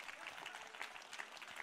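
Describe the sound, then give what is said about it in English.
A church audience applauds a pastor for being helpful, a dense, steady patter of many hands clapping at once, fairly soft and even throughout with no voices on top. “So applaud Pastor Aaron for being helpful.”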